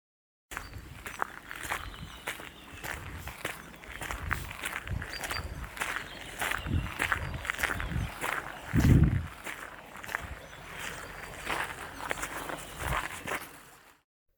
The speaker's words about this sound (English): Footsteps can be calming, intriguing, or sometimes scary.